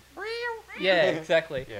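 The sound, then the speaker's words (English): A cat gives a short rising meow, then breaks into a louder, harsher drawn-out yowl with a couple of screechy bursts as it jumps out at a man, alone. “When the cat jumps out at him,”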